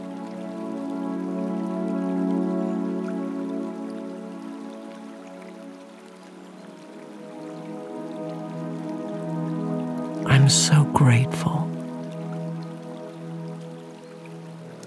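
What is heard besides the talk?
raindrops falling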